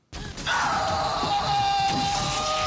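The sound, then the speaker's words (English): A man belts out a long, raw, caveman-style scream imitating Brendan Fraser's scream in the movie Encino Man, holding one strained, loud bellow for over two seconds with no other talking around it. “This is the Brendan Fraser 30-second scream segment.”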